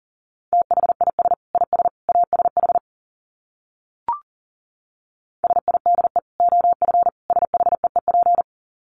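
Fast Morse code at about 40 words per minute: a single steady mid-pitched tone keyed into rapid dots and dashes, in two bursts separated by a short pause with a brief click.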